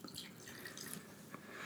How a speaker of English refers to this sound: And feel free to add a bit more mix there. I just poured you 8 ounces of vodka.